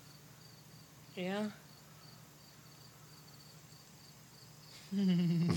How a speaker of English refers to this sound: I can hear the crickets.